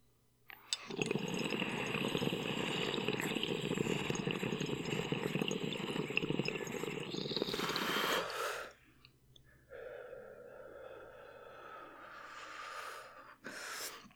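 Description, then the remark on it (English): A long hit of golden pineapple from a dab rig with a quartz e-nail: about seven seconds of steady bubbling, gurgling inhale, a brief pause, then a softer, breathy exhale lasting several seconds. No one speaks. “Ooh, hitting that golden pineapple and whatever temp this is at really hit the mint in it.”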